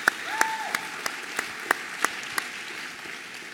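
An audience applauds a couple who have stood up, a dense wash of clapping with a few sharp, louder claps standing out in a steady rhythm, tapering off toward the end.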